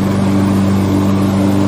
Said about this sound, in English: What are you, mowing the lawn?